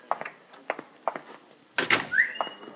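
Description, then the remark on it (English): Several evenly spaced, moderately loud knocks on a door, followed by a louder clattering burst and a short rising squeak. “That may be opportunity knocking at my door.”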